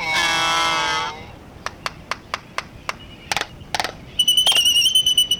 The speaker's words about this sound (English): Welcome to Midway Atoll, more than 1,200 miles northwest of Honolulu, winter home to nearly a million nesting albatrosses. Gathered together, they make a splendid racket.